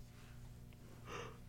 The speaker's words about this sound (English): Are you yawning?